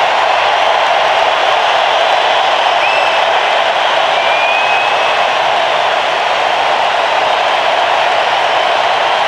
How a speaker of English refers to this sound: It's a packed house. The emotion, everybody knew the effort he put in. He starts motioning to all over the stadium to say thank you. J.J. Hinch takes the baseball from Cole, and listen to this ovation.